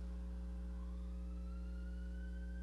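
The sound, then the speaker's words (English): An ambulance siren wails faintly from outside, its tone slowly rising over a steady low electrical hum, with no voices. “Ambulance.”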